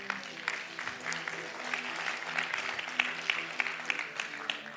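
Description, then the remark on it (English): A crowd of people applauds steadily, a dense patter of many hands clapping, sustained throughout with a faint murmur of voices beneath it. “I wasn't thinking for applause, but yay.”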